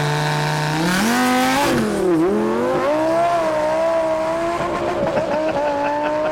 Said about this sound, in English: What is this here? Oh, that's my Lamborghini. Damn. It's a twin turbo. Look at that fucking thing. Which model is that? The hard car. Jesus Christ, that's a good-looking car.